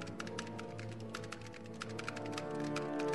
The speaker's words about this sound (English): I know I probably shouldn't be typing this out on the extranet, but I'm feeling really...